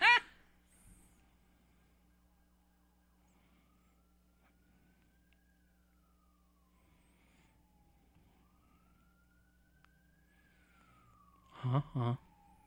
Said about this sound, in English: You know what's funny is I hear those sirens and I can't tell if that's real life or the movie. It's real life. Okay, I actually thought it was the movie.